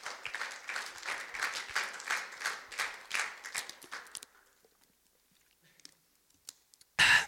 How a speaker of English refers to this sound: I believe Jesus is the answer. I believe our city needs Jesus. Come on, give him a clap if you believe that.